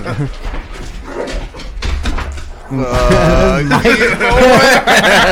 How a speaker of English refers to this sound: Dude, these dogs.